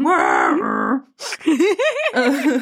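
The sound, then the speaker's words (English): A person growls out a drawn-out, throaty roar, then follows with a series of warbling, rising-and-falling vocal wails, imitating the deep bellow of an alligator. “Bellowing alligators sound like. Rawr!”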